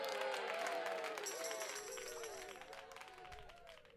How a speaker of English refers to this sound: Applause, applause indeed